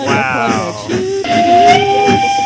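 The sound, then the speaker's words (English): A steam train whistle blows loudly and continuously, a shrill, chord-like tone that sags in pitch before settling on a steady, piercing note, with hissing steam underneath. “What's that sound talking about the train?”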